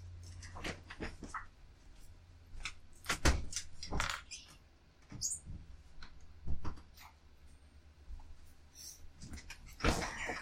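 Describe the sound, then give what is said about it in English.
A dog waiting to be let out paws and scratches at a door in irregular bursts of scraping, knocking and clicking that come and go for several seconds. No one speaks. “Dumb bitch pawing at the door.”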